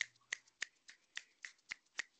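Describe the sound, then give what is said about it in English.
A run of eight crisp finger snaps at a steady, slightly uneven rhythm, each a sharp bright click with a short tail, alone with no talking. “I'll give you a one hand clap.”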